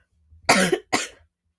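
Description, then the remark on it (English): Two harsh coughs in quick succession, loud and raspy, the first slightly longer than the second, with no talking around them. “And with that, my coughs are only getting worse”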